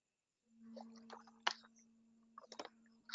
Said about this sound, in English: If you are sick, drink more. Drink the water. Me, I'm drinking my own.